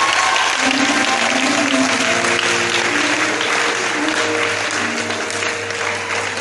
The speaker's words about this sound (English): Are you clapping like there's a future for you?